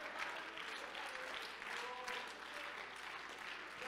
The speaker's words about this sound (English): Come on, if you could stand with me and just clap your hands unto the Lord, for he is good.